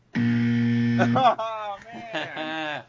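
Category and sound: sound effect, game show wrong-answer buzzer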